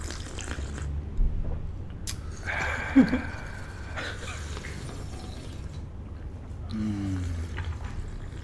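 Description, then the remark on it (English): Someone slurps tea loudly into a microphone, a few wet, hissy sucking bursts separated by short pauses, with no talking. “Go right up to the mic, right up to the mic with the slurp.”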